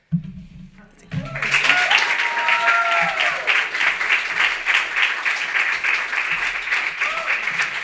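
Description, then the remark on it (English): After a brief murmur of voice, an audience at a reading event breaks into loud, dense applause for a reader who has just read for the first time, holding steady for several seconds, with a few rising whoops or whistles threaded through the clapping. “Give her one more round of applause for doing this for the first time.”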